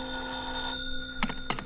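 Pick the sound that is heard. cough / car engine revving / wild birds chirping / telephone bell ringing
telephone bell ringing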